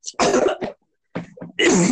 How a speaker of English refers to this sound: We need to talk about, I coughed in your face. Yes, you did.